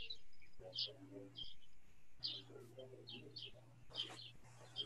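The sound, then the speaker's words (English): Birds chirp and sing in quick, high bursts repeating throughout, clear over a steady low hum with some faint murmuring underneath. “Yeah, the birds don't care, do they?”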